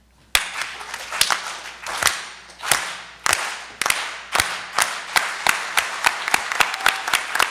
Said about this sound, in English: And in the spirit of the farm workers movement that was championed by my grandfather, Cesar Chavez, let's end with a big unity clap and a si se puede.